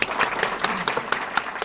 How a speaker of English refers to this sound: Let us give a hand of applause.